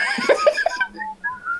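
A burst of laughter gives way to several people whistling, thin sliding tones overlapping and trailing off, like an audience whistling together.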